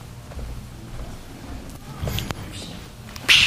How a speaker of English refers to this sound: By the way, that's our over the back hand slap that we have.